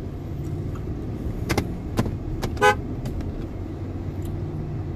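A car horn gives one short, bright toot, beeping to the neighbors on a sunny 75-degree Saturday, over a steady low engine rumble, with a few faint clicks and taps just before it.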